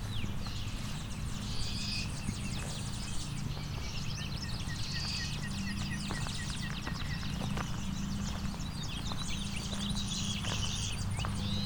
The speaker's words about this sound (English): Buzz, buzz, buzz. That's clay-colored sparrow. Not very common around here.